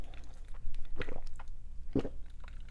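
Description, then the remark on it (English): Someone sips a drink: two short, wet slurping sounds about a second apart over a steady low hum, with no talking. “As I whet my whistle, and I hope that's not a bad thing to say, but as I hydrate my organs, I'll put it that way.”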